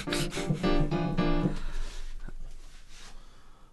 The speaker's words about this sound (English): Oh, it's my alarm for 4:10. To wake up.